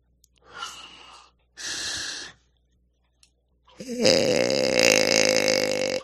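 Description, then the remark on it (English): A noisemaker pulled out of a toy croaks three times on its own: two short raspy bursts, then a longer, louder, buzzing croak that sounds almost like a burp. “I found the thing that makes it croak.”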